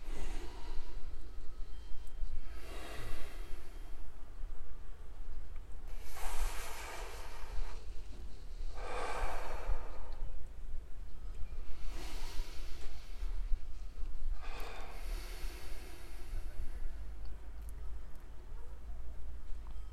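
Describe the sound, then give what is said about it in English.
Slow, deliberate deep breaths, about five long airy inhales and exhales through the mouth and nose, spaced a few seconds apart against a low steady hum, with no talking. “And maybe we can just do that two rounds again of the breathing in through the mouth, and in through the nose, out the nose.”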